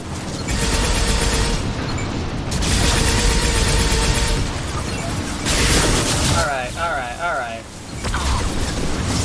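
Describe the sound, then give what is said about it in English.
Video game rockets fired three at a time by a Shadow Broker Vanguard enemy, in a series of loud, roaring bursts, each a harsh blast with a hissing rush, broken briefly by a warbling electronic tone before another volley. “He fires three rockets at a time!”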